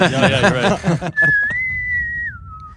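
A person whistles a short, clear tune of a few sustained notes, stepping up and then down in pitch, right after a brief burst of voiced laughter.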